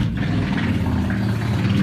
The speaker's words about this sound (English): Hell's Angels? I won't rest until motorcycles like that are illegal.